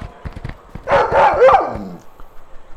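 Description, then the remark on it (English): Wolves bark in a quick cluster of three or four loud, rough yelps, preceded by a few sharp taps, with no talking over them. “Wolves can knock!”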